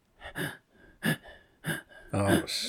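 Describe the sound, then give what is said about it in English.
A person imitates desperate gasping for air, recreating suddenly being unable to breathe while lying in bed at night the day after Christmas: four sharp, raspy inhalations spaced about half a second apart, the last one longer and strained with a voiced, choking edge, fairly loud. “I all of a sudden, I can't breathe.”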